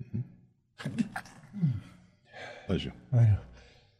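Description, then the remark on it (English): A series of sharp, breathy gasps builds up to a sudden voiced burst, like a person winding up to sneeze and then sneezing, with short pauses between the catches of breath. “I feel another sneeze coming on.”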